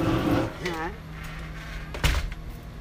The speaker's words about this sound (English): Damn, hit me with the door, bro.